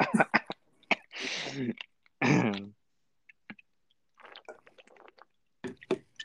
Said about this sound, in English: That was a pussy hit. That was nothing. You about to start coughing. Oh shit. Damn.